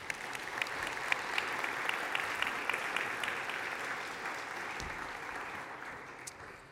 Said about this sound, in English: Let's give him a round of applause, shall we?